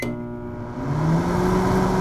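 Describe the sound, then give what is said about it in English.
A microwave oven runs with a steady electric hum and whir, swelling slightly louder partway through and holding constant to the end. No one speaks. “Microwaves are like little electric ovens that cook and heat up food.”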